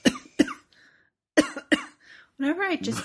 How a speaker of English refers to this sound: Whenever I take somebody like deep sniffs, I cough. It's weird.